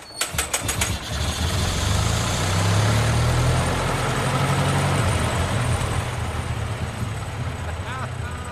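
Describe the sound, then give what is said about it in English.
The old engine of the Merriweather, hand-cranked with a winding handle, starts with a quick burst of clattering strokes, then catches and settles into a steady, deep, rumbling idle that continues loudly to the end. “And that's the Merriweather up and running.”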